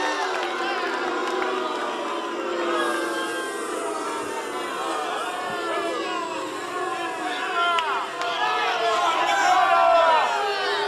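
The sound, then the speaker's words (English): A piped-in recording of a live crowd: a dense, continuous crowd roar fills the whole stretch, with many overlapping voices shouting and cheering at once, steady and loud with a slight swell near the end. “My producer will pipe in audio of a live crowd to make the show feel more at home in the metaphorical sense”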